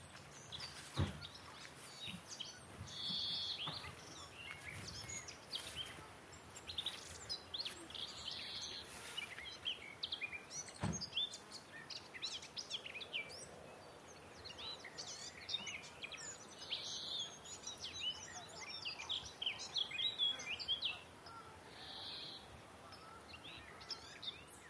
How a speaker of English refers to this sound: That's the song of the garden warbler. It kind of just keeps going.